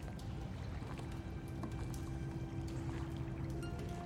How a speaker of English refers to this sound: She sat on the hard stone dock and felt the light splashes of water hit her ankles.